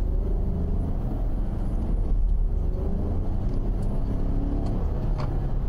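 A car speeds along 410 South near Ingram Park Mall, its engine and tires making a steady, loud low rumble that continues without a break. The engine tone wavers slightly, and no one speaks.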